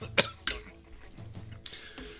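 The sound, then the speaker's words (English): A person coughs in harsh, sputtering fits after choking while swallowing and bending over at the same time, around four bursts spread unevenly with short raspy gaps between. No speech. “I was swallowing and bending over at the same time,”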